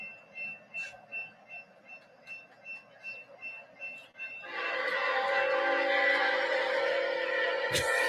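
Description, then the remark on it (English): A freight train rolls by with a steady rhythmic clatter, then a loud, sustained horn blast swells in and roars over the rumbling cars until the end. “Look for that freight fucking train and let them do the rest.”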